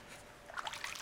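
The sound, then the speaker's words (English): A faint, brief trickle of water, with soft bubbling and dribbling sounds that begin after a quiet moment and continue to the end. No voices. “Water.”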